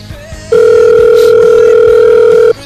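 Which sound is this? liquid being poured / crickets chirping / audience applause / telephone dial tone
telephone dial tone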